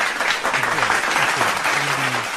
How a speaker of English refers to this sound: We're year three now, the show, which is huge. So yeah, we should clap it up.